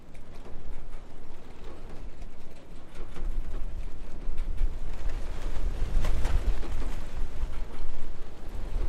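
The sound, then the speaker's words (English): A loose plastic sliding door on a garbage container rattles and bangs back and forth in a steady clatter, recorded from inside the container, sheltered from the wind, with a low rumbling background. “I go from there to a garbage container where I put the NT4 stereo mic inside, and that's the plastic sliding door banging.”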